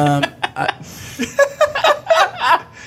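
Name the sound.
hiccups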